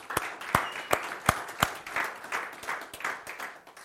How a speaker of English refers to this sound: Let's give the moms a round of applause again.